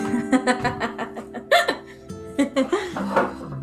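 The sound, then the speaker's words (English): A short series of abrupt throaty burp sounds, a couple of quick gulping bursts followed by a longer, drawn-out belch, over a steady humming background. “I had to burp.”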